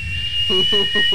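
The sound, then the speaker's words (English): Someone vocally imitates a car's whistling sound in a few short, rhythmic voiced bursts, fairly loud, over a thin, steady high-pitched whine. “You can tell because it's butt whistles. Yeah, you can hear the”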